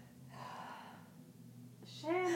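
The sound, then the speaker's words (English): A single breathy sneeze-like burst of noise, lasting under a second and moderately loud, followed after a short pause by a voice starting to talk. “Bless you.”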